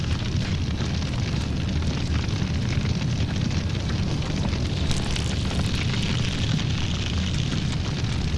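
A campfire burns in a movie scene with a steady, loud roar and dense crackling pops scattered throughout, continuous for the whole stretch, with no voices.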